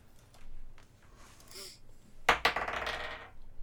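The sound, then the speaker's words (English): A sudden clatter as dice hit a hard tabletop, followed by about a second of bright rattling and tumbling before they settle. No one speaks. “If I can find my dice, I found them.”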